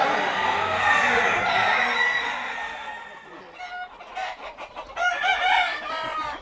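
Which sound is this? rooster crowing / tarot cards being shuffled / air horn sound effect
rooster crowing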